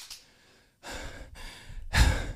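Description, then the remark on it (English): Heavy, out-of-breath panting: a quick faint huff followed by three long, loud, breathy exhales in close succession, the last one the strongest, with no talking. “I'm dizzy and out of breath.”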